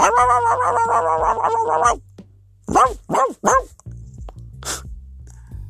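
A small dog yaps, starting with a rapid run of high, whiny yelps, then three loud sharp barks and one last quick yip after a brief pause.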